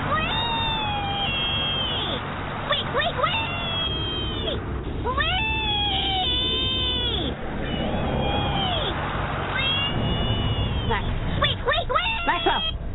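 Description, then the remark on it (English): A voice squeals a long run of high, rising "wee" cries, imitating a little piggy crying all the way home, loud over a steady rumble of background noise, in a Geico radio ad. “Did the little piggy cry wee, wee, wee all the way home?”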